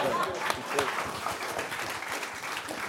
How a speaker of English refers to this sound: Hey, I'm glad you guys can clap about it now. I mean, clap and laugh.